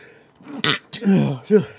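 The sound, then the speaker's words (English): A single sharp, noisy sneeze bursts out, a brief hissing blast, surrounded by voiced murmuring and throaty vocal sounds from a person. “Bless you, motherfucker.”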